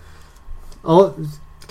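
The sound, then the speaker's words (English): A voice imitates the character Linnaeus's insect mandibles clicking excitedly together, in one short burst of rapid throaty clicks and buzzing lasting about half a second against a quiet background. “Linnaeus is, as he's recalling all this stuff about Fandral, his mandibles are clicking excitedly together.”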